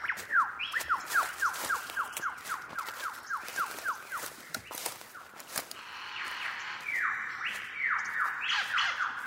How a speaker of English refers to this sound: Oh yeah, I can definitely hear the bird I'm looking for now. It's a lyrebird. It sounds like there are a few of them around here.